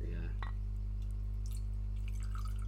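20-year-old brandy poured into a glass, heard as brief liquid trickles and splashes over a few seconds, fairly quiet against a steady low electrical hum.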